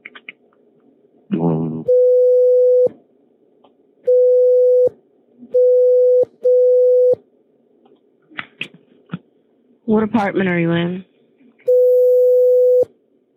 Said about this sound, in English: Okay, so what you hear is a lot of background noise in the comm center.